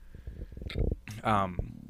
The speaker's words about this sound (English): I got my burps, guys. Almost like this is bad for radio, huh? Did it sting your nose when it was coming out?